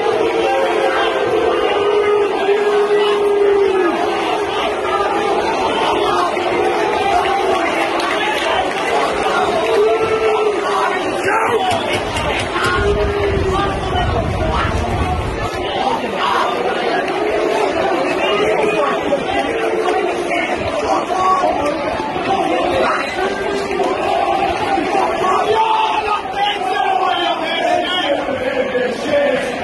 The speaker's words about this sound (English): Let's round things off with another piece of visceral Premier League crowd noise. This was the full-time whistle at Goodison Park.